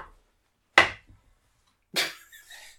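Dice clatter off a table in two sharp, bright impacts about a second apart, the second trailing into a few small rattling ticks before settling into silence.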